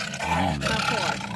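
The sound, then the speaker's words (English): A man lets out a loud, sustained roar imitating a lion, shouted into a garbage can so it sounds hollow and boomy. It lasts just over a second, alone. “He's yelling into a garbage can.”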